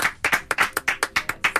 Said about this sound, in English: Do you know what? I want us all to give a round of applause to Jordan Pickford. Well done.